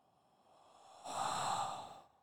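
A quiet inhale gives way to a long, breathy exhale of blue raspberry hookah smoke, swelling for about a second and then fading out. No one speaks.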